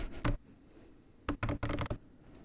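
Quiet typing on a computer keyboard, someone typing out a resume: a single keystroke, a short pause, then a quick burst of four or five clicking keys, with no voices.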